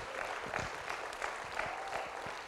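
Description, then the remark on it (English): A crowd claps steadily, a dense patter of many hands at even loudness throughout, with no voices standing out. “Come on, give him a good round of applause.”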